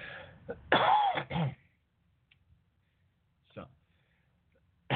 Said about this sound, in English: Excuse me again. I'm on a medication that makes me cough. When I talk a lot, it makes me cough.